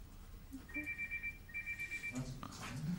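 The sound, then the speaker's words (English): A mobile phone rings with two bursts of a rapid, high-pitched electronic trill, each lasting under a second. Voices start up just as the second ring ends. “Whose phone is that? That's the second time it's gone off.”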